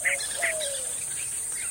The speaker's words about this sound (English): And quite a bit of bird sound. Predominant calls are yellow-breasted chat and white-winged doves. Just had a pair of summer tanagers fly by. Hearing some vireos and flycatchers. Brown-crested flycatchers, I believe, in the background.